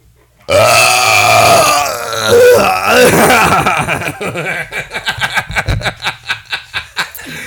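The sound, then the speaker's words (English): A long, loud, croaking burp caused by indigestion erupts suddenly and rumbles on for several seconds, then breaks into a run of quick, rhythmic chuckling bursts that trail off. “Burping like that, bro. It's called indigestion.”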